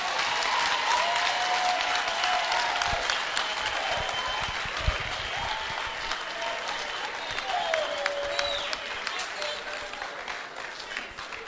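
A large audience claps for a father, steadily and loudly for the whole stretch, a dense, continuous roar of hands, with scattered cheers and whoops rising above the applause.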